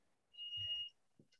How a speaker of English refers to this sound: What's that beeping? I think someone's pulled the alarm.